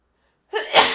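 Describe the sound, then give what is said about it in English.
A single loud sneeze erupts after a moment of silence, starting with a sharp intake and bursting into a bright, explosive spray of noise. “Oh, I have to sneeze.”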